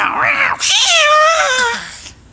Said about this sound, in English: Oh, the cat.